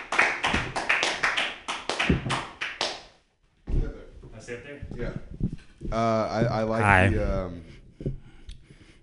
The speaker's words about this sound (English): Clippity clap, clap, clap.